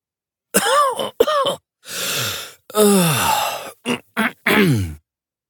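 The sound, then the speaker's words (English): A fairly loud series of coughs, a long breathy exhale and a raspy throat clearing, followed by a few short sharp coughs, with no talking. “I rub the sting out of my eyes, cough, swallow more air, exhale, clear my throat.”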